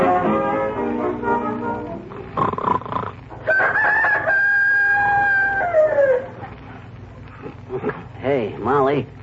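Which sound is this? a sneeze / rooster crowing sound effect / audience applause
rooster crowing sound effect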